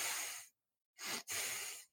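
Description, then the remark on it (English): A pet named Barry snuffles and breathes into the microphone: three airy, hissing breaths, the last two quick sniffs running almost together, with no one talking. “He's sniffing me.”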